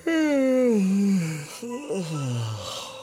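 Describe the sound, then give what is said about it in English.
A voice acts out a shoemaker's big, drawn-out yawn on waking in the morning: a long sighing tone sliding down in pitch, followed by a second, shorter falling groan as it trails off. “The next morning, the shoemaker woke up with a big yawn.”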